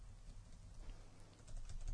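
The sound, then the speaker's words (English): Faint tapping of computer keys as a doctor types a letter, heard over a phone call, coming through a low, muffled background hiss, with a few soft irregular clicks toward the end. “Yeah, so he's typing a fucking letter.”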